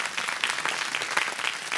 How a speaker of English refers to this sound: Everybody say amen. Amen. Come on, give God a big hand clap. God is good.